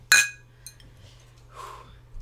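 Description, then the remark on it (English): Glasses clink in a toast: a single bright clink rings out sharply, followed by a faint second tap and a soft breathy sound, with a low steady hum underneath. “Cheers, friend. Cheers.”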